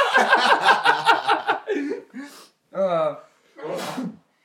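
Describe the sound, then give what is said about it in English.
Rhythmic laughter at the start gives way to a few short bursts of breath and voice, ending in one sharp, hissy sneeze followed by silence. “Bless you”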